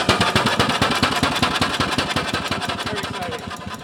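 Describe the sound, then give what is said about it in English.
Steam engine machinery with large gears and metal pistons running loudly amid clouds of hot, wet steam at Kinetic Steam Works, an industrial space in West Oakland: a rapid, steady chugging beat of mechanical strokes layered over a constant hissing rush. No one speaks. “I'm surrounded by large gears, metal pistons, and billowing clouds of hot, wet steam.”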